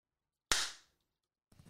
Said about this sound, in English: Well. That was good. Good. You've never done a better clap in your life.